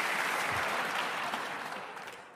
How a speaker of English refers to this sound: And I'm very, very stoked. You guys are just applauding for everything. It's great.